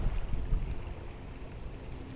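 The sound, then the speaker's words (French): Steady outdoor water ambience with a low wind rumble: gentle waves lapping on a lake beach while wind blows across the bay. The sound is continuous and moderately quiet, with no voices. “les vagues clapotent doucement sur la plage, tandis que le vent qui souffle sur la baie vous fouette le visage.”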